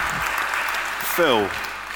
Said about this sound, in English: Give her a round of applause, I think. That's amazing.